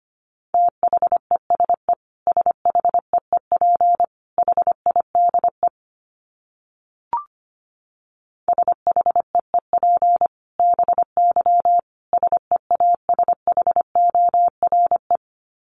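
Rapid Morse code at about 25 words per minute: a single steady mid-pitched tone keyed into quick dots and dashes, sent in bursts with short pauses and one brief click midway.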